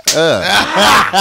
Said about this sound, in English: I gotta get slapped again.